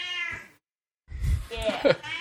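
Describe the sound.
A cat lets out a clear, drawn-out meow, then after a short pause more yowling rises amid muffled voices and background bustle.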